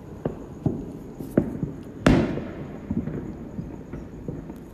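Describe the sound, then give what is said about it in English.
Fireworks pop and thud in an irregular string over Los Angeles on the Fourth of July, heard from a balcony, with one louder boom midway that trails off in a crackling, fizzing decay over a low rumbling background. “I'm seeing all these different fireworks in all these different cities.”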